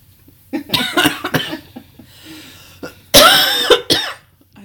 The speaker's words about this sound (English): I know it was literally just I needed a cough.